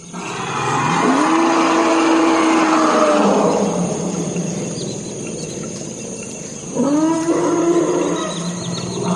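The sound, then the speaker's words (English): Forest elephants in a wetland in the Congo call twice at about 3 o'clock in the morning, each a loud, drawn-out harmonic rumble-roar rising in pitch, over a steady high chorus of insects. “That's from the Congo. Those are forest elephants.”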